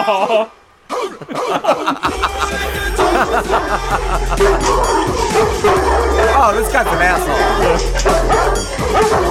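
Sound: dogs barking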